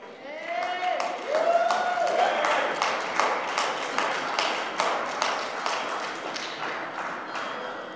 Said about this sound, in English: So a round of applause